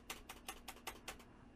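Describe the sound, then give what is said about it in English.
Six crisp, clacky keystrokes on a mechanical keyboard, evenly spaced about a fifth of a second apart, fairly loud with no voices. “It's pretty loud. I have those sweet mechanical keys.”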